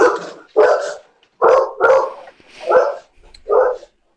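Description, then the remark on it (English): A dog barks six times in a steady series, each bark sharp and loud with short gaps between, with no talking over it. “There's the dog.”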